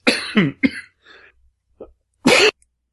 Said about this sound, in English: I muted it right at the last cough.